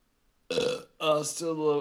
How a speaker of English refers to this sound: That's not nice. My cat just burped in the freaking phone.